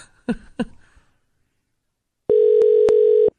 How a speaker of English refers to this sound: Well, you dial zero, it rings, but I don't know what's going to happen here.